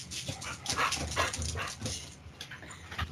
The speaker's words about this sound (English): I hear the dog is agreeing with you. So something's bothering him.